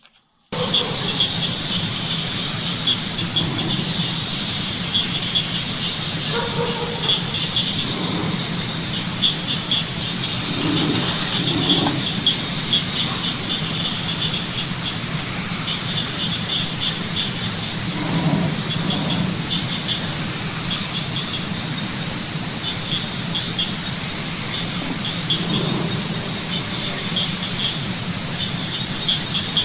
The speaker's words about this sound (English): But you'll hear dogs barking, crickets and frogs. But in the background, you hear that low, kind of a growling sound.